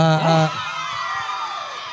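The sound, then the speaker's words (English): An audience at an anime convention cheers at the mention of the movie The Silent Voice, opening with a loud, high whoop from one voice that quickly gives way to a steady wash of crowd clapping and shouting that holds at an even level. “But they'll go crazy for an 8-year-old movie.”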